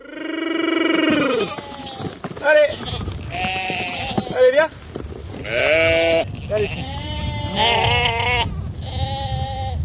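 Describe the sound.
A flock of sheep bleats repeatedly and loudly, with overlapping wavering cries throughout, while a sheep farmer calls out to his herd among the bleats at his family farm, Ferme du Puy, near the town of Dreux in France's Centre region.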